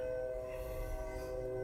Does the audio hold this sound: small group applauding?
no